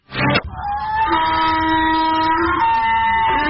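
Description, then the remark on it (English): A donkey brays in one long, loud, drawn-out honk, following a short burst of noise at the start, used as the breaking-news sound on the Armstrong and Getty Show. The braying holds a steady, reedy pitch for about three seconds with no talking. “When news breaks, the donkey brays on the Armstrong and Getty Show.”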